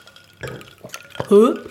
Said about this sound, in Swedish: Okej, nu tar jag en slurp. Ja, jag tar en riktigt upp. Stor.